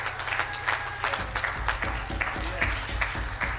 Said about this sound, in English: Will you clap your hands unto the Lord?